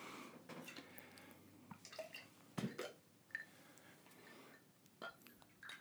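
Cocktail mix pours into a glass holding vodka, with irregular gurgles, splashes and drips coming in short bursts over a quiet background, a few sharper splashes standing out.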